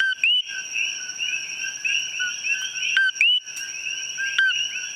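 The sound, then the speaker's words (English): A loud chorus of coqui frogs calling, with sharp, high whistled chirps rising and overlapping nonstop over a steady shrill hum, several calls standing out above the rest. “I wanted to hear what the coquille frog sounded like, but the only frogs at the museum were dead and in jars.”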